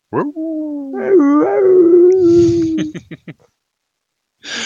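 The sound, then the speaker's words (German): Wolves in a wolf enclosure howl in a long, wavering, sustained cry with overlapping voices, followed by a few short sharp yelps, loud, with no talking. “Und immer, wenn die Kirchenglocken tönen, dann heulen die Wölfe.”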